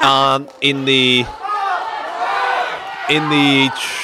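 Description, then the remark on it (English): A crowd cheers, with loud sustained shouts and whoops in three bursts over a steady wash of mixed voices and noise. “As you can hear, there's a bit of cheering there.”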